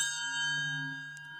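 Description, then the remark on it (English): A single bright bell ding with a clear, ringing tone and rich overtones that sustains steadily and fades slowly, heard alone. “Every time you hear this bell, you will know that you have just heard the worst analogy ever in the history of humankind.”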